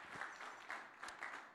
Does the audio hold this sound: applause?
yes